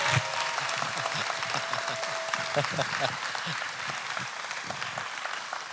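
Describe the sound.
A crowd claps steadily in sustained, dense applause welcoming a guest pastor before he preaches, holding at an even loudness for several seconds, with faint voices mixed in underneath.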